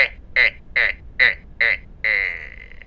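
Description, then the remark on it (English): A creaky door swinging open: five short, evenly spaced squeaky creaks followed by one longer, drawn-out groan, fairly loud and high-pitched, with no voices. “Is there a creaky door somewhere that somebody's opening? Is that what that was?”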